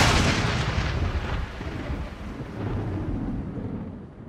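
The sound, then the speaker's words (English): A loud, booming thunderclap of a great storm rolls into a deep, sustained rumble with crackling highs that slowly fade over several seconds. No voices are heard. “And then Thunder himself broke with a great storm.”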